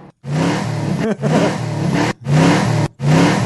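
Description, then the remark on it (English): A loud petrol car engine revs hard in repeated bursts, each climb in pitch broken by brief gear-shift gaps, dominant with a rough, throaty tone. “See, this is why electric cars will never work. You gotta have this.”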